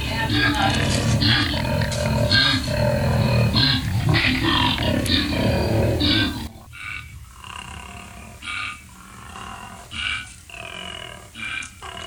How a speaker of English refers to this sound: You know, just listening to that, I'm thinking, well, you know, that sounds like a pig, doesn't it? Well, it isn't. It's a koala, and the koala is a uniquely Australian animal.